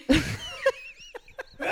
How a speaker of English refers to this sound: Damn, you can't even sneeze like calm. That one hurt my asshole.